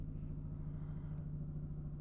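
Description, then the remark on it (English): A helicopter flying overhead, heard as a steady, heavy low rumble with a droning engine tone and faint rhythmic rotor pulsing, continuous for the whole stretch with no voices. “Well, I'm glad this helicopter's flying over now instead of mid-recording.”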